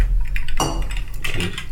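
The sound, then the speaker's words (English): Glasses of Kino Tea, a green tea infused Japanese gin, clink together in a toast, two or so bright, ringing knocks against a low, steady background hum, with no talking. “Are we gonna cheers?”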